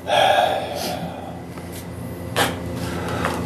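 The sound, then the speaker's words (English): A voice imitates giant, heavy, raspy breathing heard inside a dark, boarded-up building as its front doors are opened: a loud, harsh, drawn-out exhale at the start, then a quieter, steadier rasp, with another sharp breathy burst near the end. “But as soon as you open them, you hear just a giant raspy breathing.”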